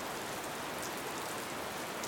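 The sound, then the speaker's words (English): Steady rain falls in a forest in the dark and patters on a surface, a constant dense hiss with scattered droplet taps, even throughout with no voices. “You follow the footprints to the woods and then it is almost impossible between the forest floor and the dark and the rain to follow them any further.”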